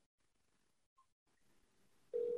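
A couple of faint, brief telephone dialing beeps, then a loud steady ringing tone cuts in at the end, as a call is placed to Providence Oyster Bar.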